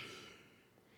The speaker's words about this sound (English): Sorry, yawning here.